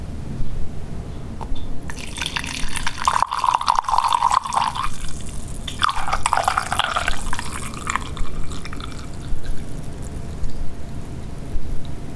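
Liquid being poured into a decanter, splashing and gurgling in two pours, with a tone that rises as the vessel fills. No one speaks.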